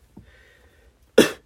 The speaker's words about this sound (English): I'm like coughing weird, like clearing my throat. It sounds fucking weird.